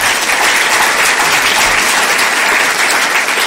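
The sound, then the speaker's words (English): A crowd applauds steadily for the new Chief Sustainability Officer John Moreau, a dense, even wash of many hands clapping at once, loud, holding at the same level without a break and with no voices rising above it. “So if there is going to be the first applause, let's put it together for this man, John Moreau.”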